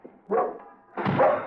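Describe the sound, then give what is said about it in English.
An old dog named Skipper barks twice: a short bark followed by a longer, fuller one after a brief pause, with no other sounds around them. “No, Skipper, be quiet. He knows. Poor old dog.”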